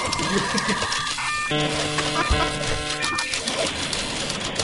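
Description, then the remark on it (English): A brief news jingle with sustained, bright tonal chords played over a continuous rattling printing-machine clatter that runs the whole way through. A low thump lands midway. “Play the news jingle.”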